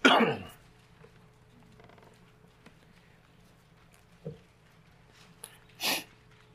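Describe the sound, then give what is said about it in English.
Scattered papery rustles and page flips as a church audience turns Bible pages to Mark chapter 10, a few brief soft bursts spread out, with a louder flutter near the end over a low steady hum. “I love to hear those Bibles.”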